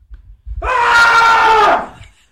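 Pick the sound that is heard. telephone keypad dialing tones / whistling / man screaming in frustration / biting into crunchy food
man screaming in frustration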